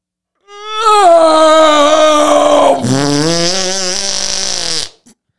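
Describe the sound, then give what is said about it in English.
Someone mimics a long, dying fart with their voice: a loud, buzzy wavering tone lasting about four seconds that sags lower, breaks into a deeper rasp, then abruptly stops. “So this is when a fart is near death and being burned alive.”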